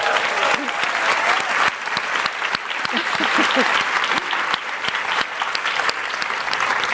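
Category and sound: crowd, audience round of applause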